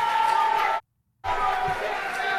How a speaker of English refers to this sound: So you get the idea. Crowd not happy. So it's slightly bigger.